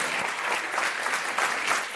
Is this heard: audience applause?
yes